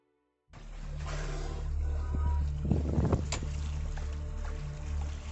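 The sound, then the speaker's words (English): A boat motors across open water off the coast of Portugal on a bright, windy late-summer day, its engine a steady low drone beneath loud, gusting wind and rushing splash noise that buffets the microphone throughout, with no voices. “It starts to the rear of the boat, a streak of white beneath the water.”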